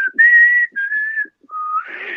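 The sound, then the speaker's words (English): A person whistles a short birdlike call imitating a mockingjay from The Hunger Games: a few sustained tonal notes with brief pauses, ending in a breathier, rising whistle. Fairly loud, with no talking. “Mockingjays do the, like, whistle shit, the whistle thing.”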